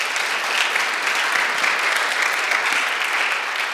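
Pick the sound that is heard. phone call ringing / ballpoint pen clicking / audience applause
audience applause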